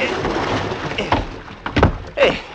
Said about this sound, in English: Give me a hand up, will you? Pull me in the boat. Sure.